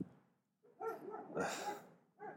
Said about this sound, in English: That's not my dog barking.